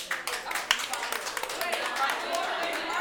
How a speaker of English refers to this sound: Ladies, round of applause.